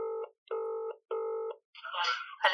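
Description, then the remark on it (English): A phone call to the speaker's wife rings out over a speakerphone: three steady electronic ringing tones evenly spaced, followed by a brief, tinny burst of sound as the line picks up. “I'm going to phone”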